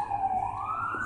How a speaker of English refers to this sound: So right now, I am currently sitting outside, and as you may hear, there is traffic and ambulances and everything running in the background. Probably can hear a couple of birds.